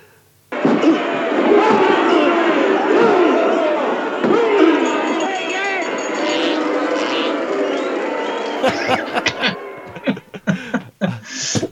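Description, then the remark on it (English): A dense crowd screams and shrieks continuously at wrestlers, with two loud raspberry noises blown by women heckling the wrestlers amid the din; the roar then breaks into choppy bursts and sharp thuds before cutting off. “But in the middle of the screaming, there are two very loud sort of like raspberry noises where the women are like heckling the wrestlers.”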